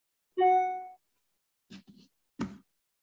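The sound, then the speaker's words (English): A single bright notification ding rings out and fades over about half a second, followed by two short, soft clicking or tapping sounds, with no talking. “And I am turning off these notifications.”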